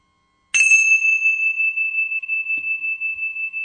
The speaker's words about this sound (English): And we're going to just open with our chime.